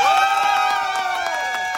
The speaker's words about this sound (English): Clap loud if you think the better movie is Speed.